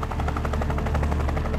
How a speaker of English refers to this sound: Alex, look up! Is that a helicopter?